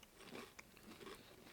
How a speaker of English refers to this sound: Sorry we're chewing in y'all ear. Here's what happens when you get high. You need a little snack.